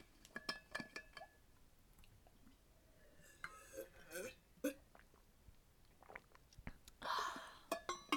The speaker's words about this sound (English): I will be drinking my water right now. Let's all have a water break, okay? ASMR water. ASMR of us drinking water.